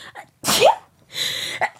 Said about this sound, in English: I need to sneeze.